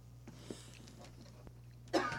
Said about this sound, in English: … doing the proper thing by turning his mic off before he coughs